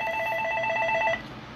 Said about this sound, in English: I don't know if I'm supposed to take a call while I'm on the radio or not.